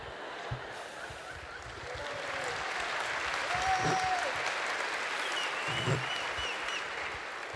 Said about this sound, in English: You think I'm stretching it? No, you can clap.